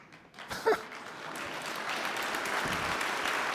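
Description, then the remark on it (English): An audience applauds the sermon, many hands clapping in a dense, steady patter that swells after a brief sharp onset and holds loud to the end, with no voices on top. “I never had anybody clap for my sermons, and now two times in a row.”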